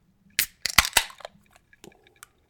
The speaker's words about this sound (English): Let's pop the tops and then we can talk about what we're drinking.